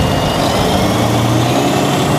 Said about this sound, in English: Neighbors grabbed shovels trying to help out, and traffic was stopped until trucks arrived to plow and salt the area.